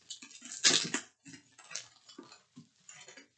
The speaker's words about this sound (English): Oh, did you just drop scissors and catch them with your bare hands? Yes. What, are you injured? No.